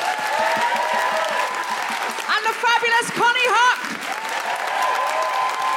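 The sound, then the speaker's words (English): Loud, sustained applause from a large audience for Ayesha Hazarika fills the whole stretch, a dense steady roar of clapping, while a voice speaks briefly over it in the middle. “And in the meantime, a huge round of applause for the wonderful Ayesha Hazarika.”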